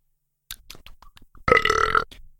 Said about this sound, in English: I got a burp, too.